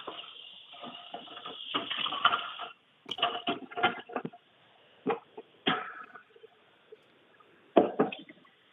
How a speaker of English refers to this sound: What is happening right now? Is he still running the test? I think he was running the test, yeah, but it sounds like he's cleaning up the kitchen now.